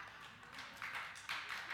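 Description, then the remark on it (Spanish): An audience breaks into applause during a sermon, a dense patter of many hands clapping that swells in two quick surges, fairly soft overall with no voices over it. “No dije eso por un aplauso.”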